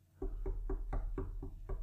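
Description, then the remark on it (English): Seven steady knocks on a door, evenly spaced about a quarter second apart, with dull, low, fairly loud thuds and no voices. “So you knock, you know, knock on my door.”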